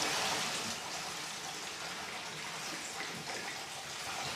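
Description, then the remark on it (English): A steady stream of gin pours into a small glass at a gin bar in Cologne, a continuous splashing trickle that keeps a fairly even level for a few seconds with no talking over it. “It's poured it in our gin bar.”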